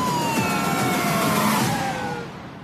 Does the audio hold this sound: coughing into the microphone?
no